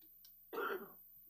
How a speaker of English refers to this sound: I hear a lot of coughing going around this morning.